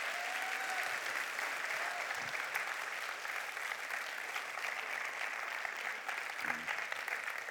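An audience applauds steadily throughout to thank a staff member who is finishing his time on staff, a dense, continuous wash of many hands clapping at an even level with no break, and a faint whistle near the start.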